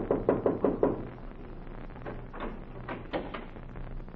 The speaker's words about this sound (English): And so he went out to heal the heartbeats of the world, to look into hospitals across the country, and to knock on any door to enter the house of the sick.